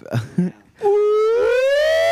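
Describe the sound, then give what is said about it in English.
After two short vocal grunts, a single voice launches into a loud, sustained wail that slowly rises in pitch, imitating a police siren for about a second and a half. “Can anyone do a good cop siren impression?”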